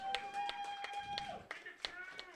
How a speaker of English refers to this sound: And winning overall with 23 points. 23 points. Team number 3. Round of applause, team number 3.